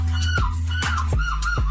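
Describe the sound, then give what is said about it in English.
A man's voice imitates a seagull with a loud run of shrill, wavering cries, about four squawks in quick succession, each breaking off with a downward yelp. “There was a human seagull championship, if you could sound the most like a seagull.”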